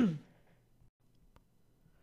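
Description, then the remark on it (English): A single short, rough throat clearing bursts out at the start, loud then quickly fading, followed by near silence with a faint low hum and one soft click. “I had to take a break to clear my throat.”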